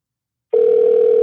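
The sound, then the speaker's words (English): A steady, continuous phone dialing tone as a call is placed to someone again, beginning abruptly after a brief silence and holding at an even, fairly loud level with no interruptions or talking. “I'm gonna try to call this nigga one more again.”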